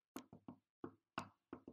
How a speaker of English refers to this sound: Knock on wood.